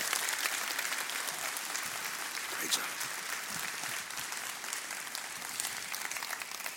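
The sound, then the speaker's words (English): Steady, dense applause from a church audience for people being commissioned fills the whole stretch, a broad crackling wash of many hands clapping at once, with a voice briefly speaking over it. “All right, put your hands together. Give a big round of applause.”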